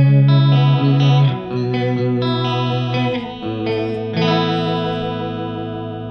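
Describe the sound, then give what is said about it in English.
Electric guitar chords played through a chorus pedal on its less intense setting, with depth about halfway, speed just past noon and the chorus knob about 3 o'clock; the tone shimmering and slightly wavering, with several strummed changes ringing out over about six seconds and no talking. “So let's go to the chorus and the less intense setting.”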